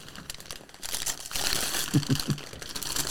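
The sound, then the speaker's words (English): Continuous crinkling and rustling of wrapping paper being torn open as a gift is unwrapped, with a few brief voiced murmurs in the middle and no clear words. “Hey, save that paper. We'll use that next year.”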